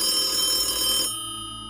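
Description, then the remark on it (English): A telephone rings loudly, one bright, buzzing ring that cuts off abruptly and leaves a fainter lingering tone. No voices. “Oh shit, there's a phone on this thing.”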